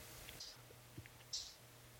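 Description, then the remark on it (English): Two small, sharp computer mouse clicks, about a second apart, sounding quiet over a low steady electrical hum. “Nope, he's still going. You can hear click, click, click, click.”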